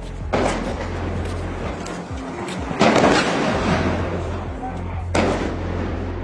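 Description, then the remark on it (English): Heavy gunfire at the Jabalia refugee camp in northern Gaza crackles in loud bursts, with three sharp, booming blasts spaced a couple of seconds apart over a constant rumbling, noisy background. “video geolocated by CNN shows heavy gunfire at the Jabalia refugee camp in northern Gaza today”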